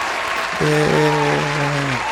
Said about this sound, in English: Speaking of dropping gems, we've been dropping gems for officially 2 years now, man. Give us a round of applause, man.